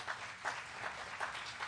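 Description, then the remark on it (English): Audience clapping in a steady, even rhythm, about five claps spaced evenly apart over a soft background hiss. The claps are fairly quiet, and no one speaks. “Someone clap.”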